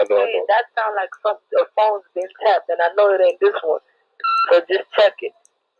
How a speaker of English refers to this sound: That sound like some phone's been tapped, and I know it ain't this one. So just check it.